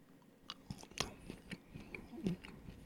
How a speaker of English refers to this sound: Oh, she's doing it. She's chewing it.